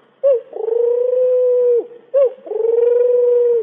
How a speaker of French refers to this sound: La tourterelle.